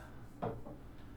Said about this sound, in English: So again, apologies for my squeaky chair. I'm working on it.